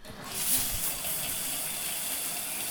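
Steady hiss of water spraying from a running shower in a bathroom, behind a shower curtain, continuous for the whole stretch, with no voices.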